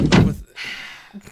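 A single heavy door slams shut with a loud, booming thud, then a short hissy rumble lingers and fades into near silence.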